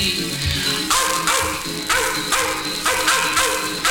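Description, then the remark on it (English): Dogs yap and yelp in a rapid string of sharp, loud bursts, about six in under four seconds, with snarling in between over a steady tonal backdrop. “They're snarling, yapping, yelping's like a dream.”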